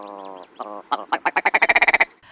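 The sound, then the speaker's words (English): A willow ptarmigan's strange call: a nasal, drawn-out opening note followed by a fast, accelerating series of loud, rattling clucks, clear with no one talking. “My students back in the 1970s named the willow ptarmigan the winner of their contest to find the weirdest bird call in the universe.”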